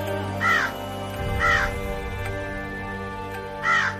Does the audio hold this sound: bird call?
yes